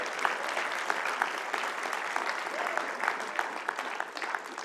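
Steady applause from a large church audience during a Sunday service, many hands clapping densely and continuously at moderate volume without pause, no voices standing out above it.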